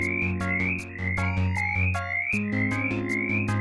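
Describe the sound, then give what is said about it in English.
An Appalachian mountain chorus frog repeats a rapid, high-pitched creaking call about twice a second, each note rising slightly, loud over a steady humming drone with no talking. “The frog is known for its rapid, high-pitched call.”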